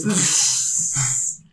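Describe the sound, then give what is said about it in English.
A person imitates the sleeping breathing of a mini giant elk: one long, airy, hissing breath over a low, throaty rumble, steady for over a second with a small swell near the end, then stopping. “So it's already sleeping and all you hear is like...”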